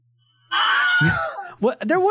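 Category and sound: sound effect, wilhelm scream sound effect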